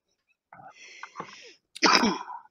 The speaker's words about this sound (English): I was told to stop coughing, but that's kind of what I do. I can't really control that.